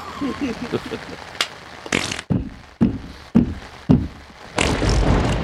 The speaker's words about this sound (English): Oh, that's thunder. And then also, so is that. It's really coming down out there. It's really coming down.